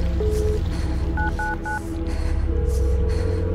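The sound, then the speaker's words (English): Three quick two-tone keypad beeps, evenly spaced and clearly audible, ring out over a steady low rumbling background hum, as a phone number is dialed in a bathroom to call the police for help. “I found my way to the bathroom and slammed the door shut, pinching myself in the corner of the shower and trying to call for help.”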